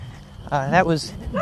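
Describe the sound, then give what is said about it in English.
A dog, faced with a person walking near a house with a flashlight on, gives a drawn-out barking yowl that rises and falls in pitch, followed by a quick, softer yip, all within a second and a half. “That was an interview with the dog.”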